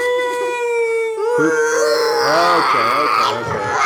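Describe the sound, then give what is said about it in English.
A child whines in a long, steady high-pitched tone, then breaks into wavering, sobbing cries that rise and fall in pitch, loud throughout with no clear words. “Just whining.”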